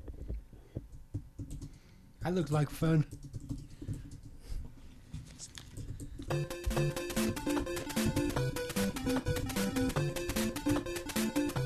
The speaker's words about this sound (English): Keep typing. Keep typing. Keep typing. Keep typing.